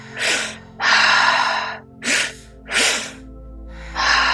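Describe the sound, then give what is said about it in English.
Loud deep breaths during a breathwork exercise in a steady rhythm, quick sharp inhales alternating with longer, airy exhales, with no talking. “Breathing in lightness and exhaling tension.”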